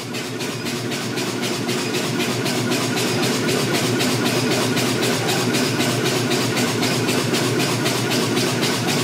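An induction heater heats a small area of a railroad spike for straightening, droning loudly and steadily, a dense electrical buzz with a fast, even pulsing running through it for the whole stretch, with no voices.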